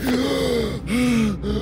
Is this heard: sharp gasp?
yes